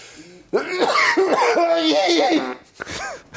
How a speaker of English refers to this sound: Excuse me. Hold on. I got to head out of a cough.